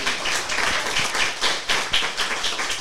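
A crowd applauds steadily, many hands clapping in a dense, continuous patter with a few sharper claps standing out, fairly loud throughout and with no voices over it.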